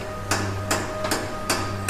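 Four sharp hammer blows ring out at an even, unhurried pace, bright clanks of metal as Alfred repairs the Batmobile's engine, over a low, steady background hum. No one speaks.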